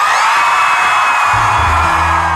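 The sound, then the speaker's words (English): A large protest crowd at a rally cheers and whoops in a loud, sustained roar, answering a speaker, with high shrill whoops riding over dense overlapping voices and a low rumble building partway through. “That crowd becomes the music, becomes the energy and that drive, that wave of hope.”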